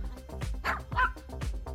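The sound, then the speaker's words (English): Puppies bark and yip in quick, overlapping bursts, several high-pitched yaps in an uneven rhythm with a soft whimper mixed in, moderately loud with no talking. “We intently watch puppies play.”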